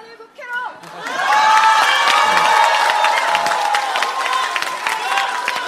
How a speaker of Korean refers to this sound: 네. 자, 4번 박수칠 준비하십시오.